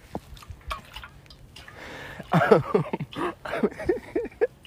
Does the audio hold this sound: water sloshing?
yes